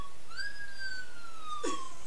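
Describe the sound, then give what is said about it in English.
A cartoonish whistle sound effect swoops upward, then glides slowly downward in one long, clear tone, ending with a brief soft pop. No one speaks. “She really used the whistling sound effect.”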